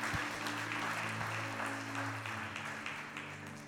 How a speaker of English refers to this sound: Give God a clap for who he is.